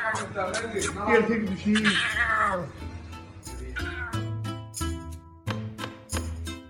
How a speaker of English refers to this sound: also posted a video on social media of his pet lion cub. That's the cub meowing.